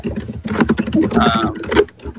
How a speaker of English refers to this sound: She is typing ferociously. I want to point that out. She has the strongest type game ever. Like, that was amazing.